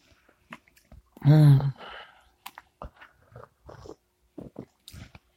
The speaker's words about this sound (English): Had to do the double sip there. Bracing.